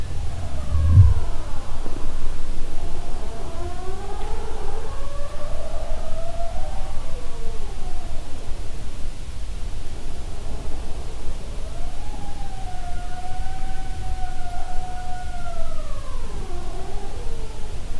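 Singing sea ice: eerie, whistling tones that slide up and down in long, overlapping glides like a slow siren, over a steady low rumble. No voices.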